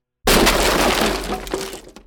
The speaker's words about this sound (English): He didn't have time to scream as the hands burst through the wall, grabbed his head, and pulled.